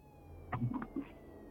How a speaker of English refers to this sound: There is sirens in the distance.